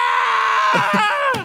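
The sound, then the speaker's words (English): A man lets out one loud, sustained, high-pitched scream at full voice, holding steady before the pitch sags and breaks off at the end. “I like to do that, but instead I go to, like, a crowded public place, like a train station, and then I just scream at the top of my voice.”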